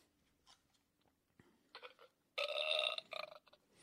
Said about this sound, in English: Excuse me, sorry for the burps.